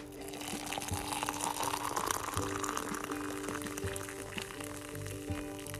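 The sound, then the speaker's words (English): Nescafé coffee pours steadily into a soft yellow cup printed with tulips and the words Happy Spring for several seconds, a continuous splashing stream whose pitch rises gradually as the cup fills, with a faint background hum and no talking. “Coffee cheers, my friends, to a brand new, beautiful day with a delicious cup of coffee filled in my cute, soft yellow coffee cup that says Happy Spring and it has tulips on the front of it.”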